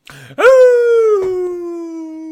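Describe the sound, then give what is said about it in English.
A person imitates a wolf howl with one loud, drawn-out vocal tone that swoops up and then slowly sags in pitch over about two seconds, after a brief breathy sound. “I don't have a wolf.”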